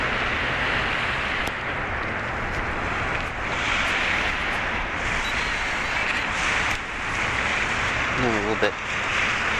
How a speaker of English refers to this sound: Hear the water kind of lapping in. The water's relatively calm today.